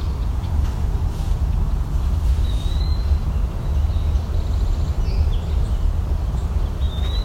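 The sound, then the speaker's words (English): A few faint, thin bird whistles and calls from a wood-pewee and a gnatcatcher come at intervals, partly buried under a steady, loud low rumble of wind or traffic. “There's our woodpewee again. And that gnatcatcher.”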